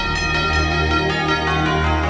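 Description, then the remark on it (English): Loud bells ring steadily with no one speaking, repeated strikes landing about every half second over a dense, sustained wash of overlapping ringing tones. “So, Mike Rankin, ring those bells.”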